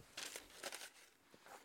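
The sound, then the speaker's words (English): Paper rustling and crinkling in three short bursts, with bright crackly handling noise as a sheet of fancy paper is squashed and stowed in a studio storage compartment; no one speaks. “So, hey, while I'm at it, I'm going to take this fancy paper and put it in the awesome studio storage compartment.”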